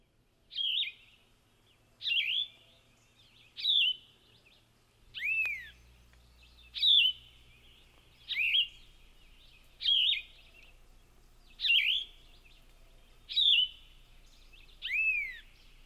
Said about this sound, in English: Next, we're going to profile a bird, and tonight we're going to talk about the yellow-throated vireo. It's a small songbird that occurs high up in the hardwood canopy, thus it's best located by its song, heard here.